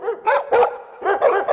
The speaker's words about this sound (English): But first, puppies!